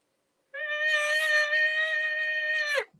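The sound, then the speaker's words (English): An elk call blown on a latex diaphragm reed held on the tongue, latex facing out, raised to the roof of the mouth while air is lightly hissed across it so the latex vibrates: one loud, steady, high-pitched whistling whine with buzzy overtones, held about two seconds before breaking off with a short downward drop. “And then if you put the reed on your tongue with the latex facing out, so like this, like that, raise it up into the roof of your mouth and just hiss air.”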